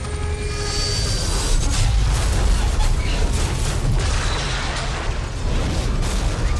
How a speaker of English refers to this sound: He immediately fired his grappling hook, snagging the car on one of the buildings, causing the helicopter to go down from the weight. The gang members panicked and parachuted out as the helicopter crashed.